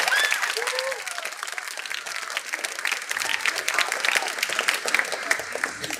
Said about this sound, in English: If we could give them all a round of applause for all of their hard work with ILMEA.